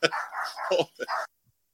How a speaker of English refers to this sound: So, sorry, my dog just went nuts over something.